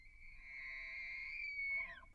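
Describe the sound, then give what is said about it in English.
A bull elk, one of two bulls bugling back and forth near a harem of six females, bugles once, a long, high, whistling squeal that holds steady for about two seconds before dropping and breaking off, heard clearly over a faint low rumble of outdoor background. “And you can hear those two bulls are bugling back and forth to each other.”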